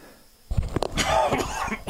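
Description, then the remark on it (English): A single harsh cough bursts out after a brief quiet moment, followed by a rough throat-clearing rasp; no speech accompanies it. “Excuse me for the cough.”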